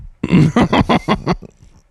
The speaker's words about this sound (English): No, I think he just swallowed the water the wrong way. Swallowed water the wrong way with a bunch of air.